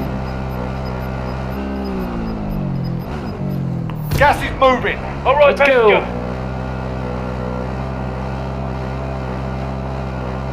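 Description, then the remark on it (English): A video game car engine drones steadily throughout, a low humming rumble that holds a constant pitch as the vehicle drives, while a man briefly shouts excitedly over it midway. “I'm driving to you.”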